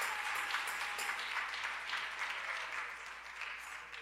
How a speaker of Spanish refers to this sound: Denle fuerte ese aplauso al Señor con el corazón.